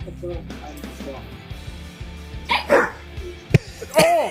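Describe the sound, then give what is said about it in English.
A big dog playing with a puppy over a ball lets out a few loud, sharp barks that startle the puppy, bursts that cut through a busy background with some murmured talk underneath. “The bark is so loud, the puppy didn't see it coming.”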